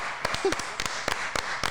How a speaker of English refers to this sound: Oh, clap. We got to clap for the cooch. Clap for the cooch.